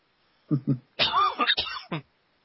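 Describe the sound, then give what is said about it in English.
A run of harsh coughs: two quick hacks, then a longer rasping, throaty cough with a wheezy edge, followed by two more short bursts, with no talking. “We have coughing lately.”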